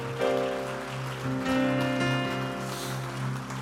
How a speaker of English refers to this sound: Would you clap your hands again and just love Him? Just express yourself to Him.